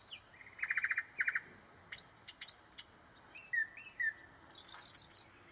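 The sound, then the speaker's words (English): A northern mockingbird sings a varied run of phrases outdoors: buzzy trilled bursts, rising whistles, low slurred notes, then a high rapid chatter, each phrase distinct, with no voices. “We have a mockingbird outside. My wife audio recorded it.”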